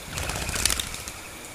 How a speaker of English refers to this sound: The chattering of the monkeys, the trumpeting of the elephants, and the constant chirping of the birds added to the clatter of the rain the whooshing of the wind, and the flapping of birds' wings.